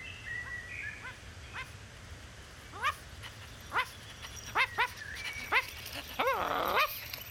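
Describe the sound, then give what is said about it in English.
A small dog whimpers and lets out a series of short, high yips, spaced irregularly, with a brief whining stretch near the end, all over the steady rushing noise of a waterfall. “Hello, little dog.”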